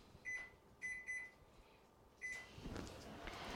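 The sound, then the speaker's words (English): Four short electronic keypad beeps from a microwave oven, three in quick succession and one after a pause, then the steady whirring hum of the oven starting to run, set to 50% power for 2 minutes to melt a bowl of butterscotch chips, brown sugar and butter. “And put your microwave at 50% power and cook it for 2 minutes.”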